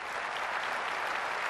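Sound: crowd cheering and applauding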